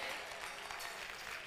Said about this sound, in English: No, come on, clap your hands now.